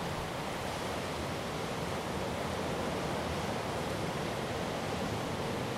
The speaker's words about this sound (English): As we listen to the sounds of these waves taken directly from the Marshall Islands